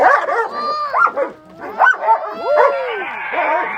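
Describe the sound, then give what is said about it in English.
A dog chasing birds, near a goat, barks and yips in quick, excited bursts, its high, whiny yelps rising and falling in pitch and overlapping one another, with agitated voices mixed in. “What's crazy is the dog's chasing the birds until the birds make the goat mad.”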